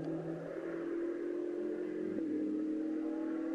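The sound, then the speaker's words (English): A race car engine roars steadily, its pitch climbing gradually as the car accelerates hard and picks up speed very quickly, with a continuous loud whine and no voices. “Car picks up speed very, very quickly.”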